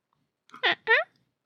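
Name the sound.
person imitating a cat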